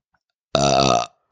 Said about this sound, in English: Burped at all in this one. I know. Burp.